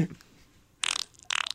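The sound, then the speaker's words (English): Two short, wet, juicy fart bursts, sputtering and spluttery, with a brief pause between them; fairly loud, with no talking. “That one's a little wet. That's too juicy.”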